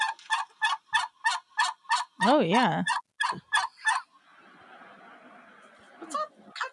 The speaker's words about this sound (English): It was like a squawk. It was a lot. He was loud, this turkey. So then I was like talking to the turkeys.